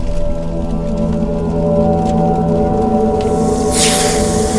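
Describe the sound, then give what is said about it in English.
A loud, sustained shriek of a Wraith struck by a Finger of Death spell and severely injured, a dense stack of droning, harmonic tones, swelling slightly and ending in a harsh, hissing burst. No one speaks. “And the Wraith shrieks out, not dead, but severely injured.”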